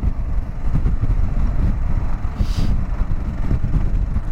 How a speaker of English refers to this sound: Welcome to the Hood Canal Bridge. Everything's windy as fuck.